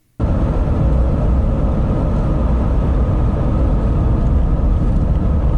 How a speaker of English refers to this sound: And there is, you're so hearing, you know, just the regular noise at freeway speeds.